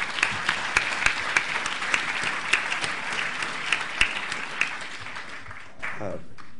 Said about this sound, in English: So let's give a round of applause for our wonderful...